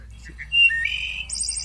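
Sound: wood thrush song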